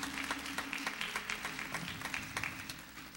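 A church audience gives the Lord a hand clap of praise for those who have gone on before, steady, dense hand clapping, many overlapping claps forming a continuous crackle with a few sharper individual claps standing out, holding an even moderate level throughout.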